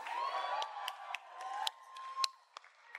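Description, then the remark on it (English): Sharp, loud claps close to a microphone, about ten of them at a steady, slightly uneven pace, standing out over a background of crowd noise and cheering with a faint sustained tone. “Someone's clapping too close to their mic.”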